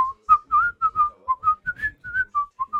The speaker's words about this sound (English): I had a hard time whistling a couple of years ago, but since I've had the birds, I whistle to them a lot, so it's gotten easier. I'm not good at it, but I whistle to them a lot. Usually I whistle video game themes for some reason.